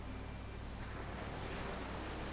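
Ocean waves wash steadily onto the shore in a continuous, rushing surf with no distinct breaks, fairly quiet and even throughout, with a hint of wind and no voices.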